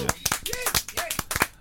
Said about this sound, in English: So my brother celebrated his birthday at the beginning of last week, really. So he's the oldest birthday this week. But I'm gonna play a round of applause for him.